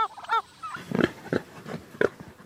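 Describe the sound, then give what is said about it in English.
Pigs in a paddock on a farm grunt in short, rough bursts, about four snorting grunts spaced out over a couple of seconds, preceded by a few higher squealing calls, with no talking. “So we move the pigs every few days from paddock to paddock.”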